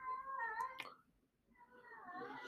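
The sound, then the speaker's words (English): A pet cat cries out in two drawn-out, wavering wails separated by a brief pause, loud, with no talking. “My cat's fucking crying because she messaged me.”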